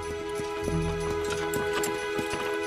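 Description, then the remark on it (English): Horse hooves clip-clop in a steady walking rhythm, several distinct knocks over a constant low background hum, moderately loud, with no one talking. “The great shire horses of old England cleared the land, plowed the fields, and hauled their produce to market.”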